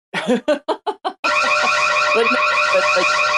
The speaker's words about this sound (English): I need an alarm. I need like an alarm button.